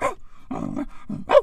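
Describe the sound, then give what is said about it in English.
A Danish Mastiff lets out a few rough, growly barks in quick bursts, fairly loud, with a short howling rise at the end. “This dog be out here going, you got a friend in me.”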